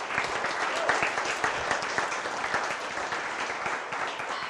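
Steady applause from a sizable audience at an event in Clitheroe, dense overlapping claps sustained at even loudness for several seconds with no voices standing out.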